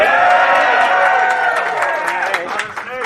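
crowd, crowd whooping and cheering

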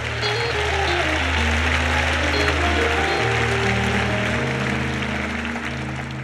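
crowd, audience clapping hands

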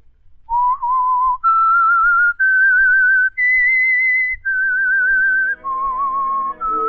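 whistled theme melody

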